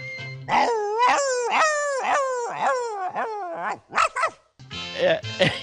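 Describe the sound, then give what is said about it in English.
A person imitates the dog from the Pirates of the Caribbean attraction, voicing a series of whiny, howling dog-like barks and yelps, about six in a quick uneven run, loud, with no ordinary speech alongside. “And I'm going with the dog.”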